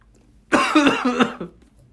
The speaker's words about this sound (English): Honestly, anytime I try to smell it, I just cough.